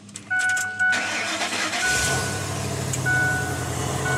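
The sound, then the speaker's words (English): Soft warning chimes sound, then a Ford F-150 pickup truck fitted with a homemade hydrogen system cranks and catches, settling into a steady idle rumble while a few more chimes ring out. “His system, which he built and installed in an F-150 truck, was innovative enough that it was actually granted a patent.”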